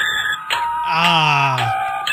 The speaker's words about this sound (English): But I can tell you by those beeps and tones that it is time for the spacecraft update.